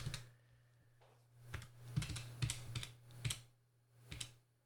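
A series of about nine crisp plastic clicks from calculator keys being tapped at an uneven pace, over a steady low hum, with no talking.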